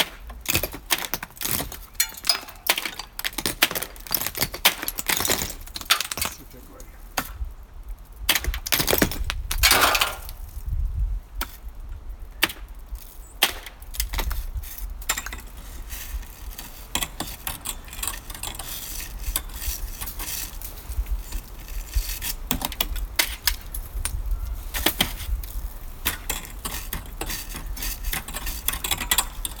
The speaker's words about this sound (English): That was Banging Icicles Off the Dormer Window to Prevent Ice Dams